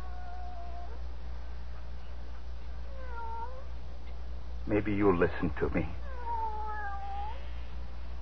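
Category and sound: animal, cat meowing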